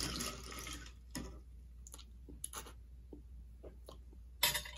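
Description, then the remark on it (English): Iced tea pouring into a glass as a mixer for a drink, a brief splashy pour followed by scattered small clinks and drips, then a short final splash. No one speaks. “Iced tea, terrible choice to mix with, but it's just what I have.”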